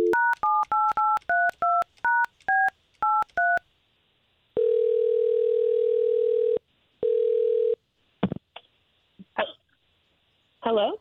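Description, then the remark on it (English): A rapid series of about eleven clear phone keypad tones dialing a woman's phone number, followed by a steady ringing tone, a short gap, a second ring that cuts off, then faint handling clicks. “Well, I appreciate you giving us her phone number so this way we can call her.”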